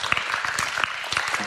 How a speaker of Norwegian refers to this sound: Kan vi ikke gi dem en skikkelig applaus når de kommer, så skal vi snakke litt om det.